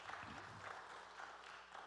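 A church audience claps for themselves during a morning service, a steady, dense, continuous wash of applause, fairly quiet, with a brief murmur of voices near the start.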